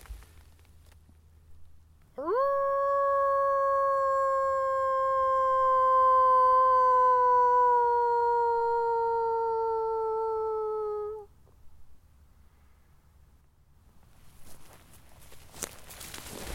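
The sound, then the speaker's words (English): A person imitates a wolf howl in a forest in Germany, trying to get a wolf to howl back: one long, loud call that swoops up, holds for about nine seconds while slowly dropping in pitch, then stops, leaving quiet outdoor stillness and faint rustling. “I gotta try one more wolf howl.”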